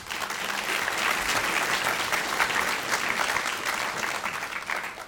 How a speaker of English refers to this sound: and I think you saw that huge applause and respect for your speech, I would like to thank you on behalf of everybody for such an eloquent explanation of the importance of the Human Rights Act